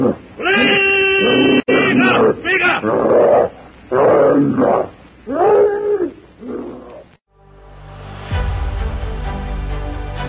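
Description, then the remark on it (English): A savage, ape-like brute with great hairy red arms swinging charges Tarzan, letting out a string of loud, harsh, ear-splitting shrieks and roars in rapid bursts for several seconds, then falls silent as music swells in. “With great hairy red arms swinging, the savage brute charges Tarzan with an ear-splitting shriek.”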